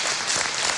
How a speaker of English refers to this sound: Hey, another round of applause for the worship team, huh? Killed it.